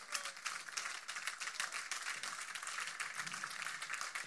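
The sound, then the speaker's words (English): A crowd applauds steadily, a dense, bright wash of many hands clapping at once, sustained at an even level throughout with no talking over it. “Thank you for the obligatory clapping.”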